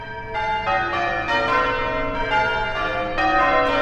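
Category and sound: signal or alarm, church bells change ringing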